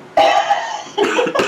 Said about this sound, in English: I'm still laughing, or still coughing from that laugh. You're still coughing, too.